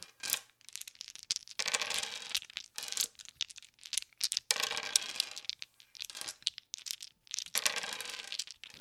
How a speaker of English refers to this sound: If the sounds of these dice being rolled makes you feel all tingly, you might have ASMR, autonomous sensory meridian response.